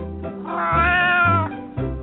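A cat lets out a long, drawn-out meow, loud, rising into a strained wail before trailing off, with a steady low hum running underneath.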